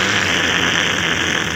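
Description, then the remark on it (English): Loud, steady white noise, triggered by a band member pressing a pedal, fills the whole stretch, a dense unbroken hiss with no rhythm or change in level, and no voices over it. “He pushes the pedal, and the white noise comes.”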